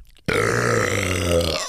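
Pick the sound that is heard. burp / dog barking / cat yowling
burp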